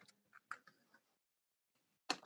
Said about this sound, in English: Let me just shuffle them a couple times. Okay. One more time.